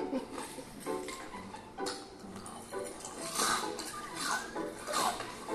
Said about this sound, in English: Oh my God, could you chew any louder?